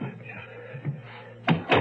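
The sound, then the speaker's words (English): Two quick, solid knocks on a door land close together near the end, following a stretch of quiet, low background murmur. “Who's at the door?”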